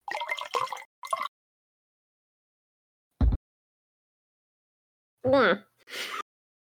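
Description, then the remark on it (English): A few short bursts of wine splashing into a glass, with a brief gurgling pour whose pitch rises as it fills, separated by quiet pauses; fairly soft. “I'll go ahead and taste something. Pour myself some more.”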